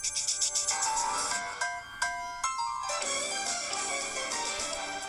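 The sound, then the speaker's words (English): A bright, tinny TV theme tune plays from a phone held up to a microphone, thin in the bass, with a steady run of melodic notes and no one talking over it. “This is Family Matters, right? It is. It's the only family that matters. And I'm playing it on my phone.”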